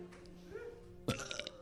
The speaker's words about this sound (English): First off, in the belch off, a woman with an extra Instagram following based on her belching. Ladies and gentlemen, here it is,